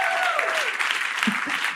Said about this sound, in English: Thank you. An applause. I think an applause break in general for an accumulated hour of people appreciating how much you want to help other people. I think that's what that applause break was.